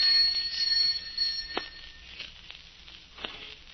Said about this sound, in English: Answer the doorbell, will you?